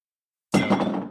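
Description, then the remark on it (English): A full beer glass gets knocked over: a sudden loud clunk and clatter of glass with bright ringing clinks, lasting just over half a second after silence, with no voices. “No, but I did knock over a full one.”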